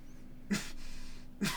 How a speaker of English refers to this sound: I actually had to cough. Great timing.